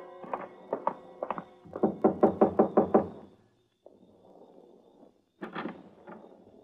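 Police knock on the door of motel room number 12: a few quick pairs of raps, then a faster, louder run of about seven solid knocks, followed by a quiet pause and one more thud.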